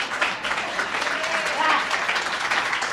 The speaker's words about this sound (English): Oh, come on, y'all can clap better than that.